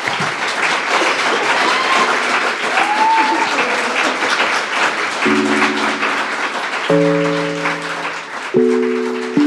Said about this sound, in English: So everybody, please join me in giving a round of applause to our wonderful and amazing panelists.